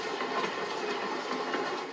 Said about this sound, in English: Ukraine, March 2022. Uzhgorod train station. One after another, trains with evacuees roll in. Train Poltava-Uzhgorod is arriving to track number 3. Train Kharkiv-Uzhgorod is arriving to track number 2.